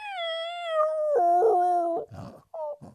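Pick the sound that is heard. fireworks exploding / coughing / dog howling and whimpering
dog howling and whimpering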